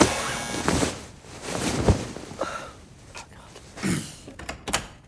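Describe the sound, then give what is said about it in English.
A door opens with a few sharp clunks and scraping rattles spread over several seconds, with faint breathy sounds in between. “The door.”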